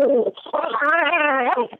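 A voice imitates a dog's growl: a loud, buzzy, wavering vocal rumble that sputters briefly, then holds a sustained, slightly rising tone for about a second before trailing off.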